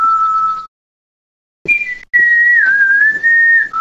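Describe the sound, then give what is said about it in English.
A person whistles a short TV theme tune from memory, holding steady tones with a brief pause and a sliding pitch, a faint lower hum underneath partway through. “trying to whistle the theme song because we had it in our heads and we would know it if we heard it.”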